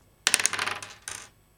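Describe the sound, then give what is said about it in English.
Dice rolled by a player during a tabletop game rattle and clatter across a hard table surface: a quick burst of sharp clicks that settles into a short tumble, then a second brief skitter before stopping. Fairly loud, with no voices. “Well, yeah, you haven't rolled yet, so I thought you might want to roll this.”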